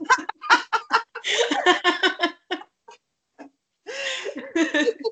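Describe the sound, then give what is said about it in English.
A cuckoo clock plays its hourly recorded bird call, a different bird each hour: a quick run of bright chirps and clucks, fairly loud, a brief pause with a few scattered notes, then another burst of calling. “It's a cuckoo clock, and it's my mother's clock, and every hour a different bird.”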